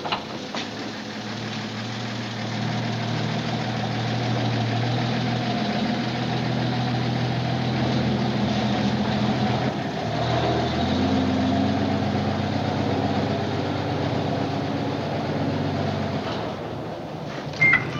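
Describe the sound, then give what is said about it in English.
A tow truck's heavy engine idles and runs steadily, its low rumble shifting pitch midway as it pulls into a shed, then settling before cutting off near the end as the truck stops inside. No voices. “The guy gets out of the tow truck, pulls it into a shed of some kind.”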